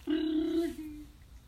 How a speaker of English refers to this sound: Interior, main deck. The phone rings. Bring!